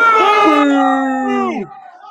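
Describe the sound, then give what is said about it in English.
Several voices boo a man called Wags together in a long, sustained, low-pitched drone that holds steady for about a second and a half, then slides downward and trails off. “Ooh, can we get a boo? Boo. Boo this man.”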